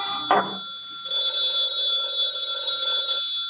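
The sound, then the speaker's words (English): A telephone bell rings in one sustained, shrill metallic burst lasting about two seconds, preceded by a short clunk. No one speaks. “Saved by the bell.”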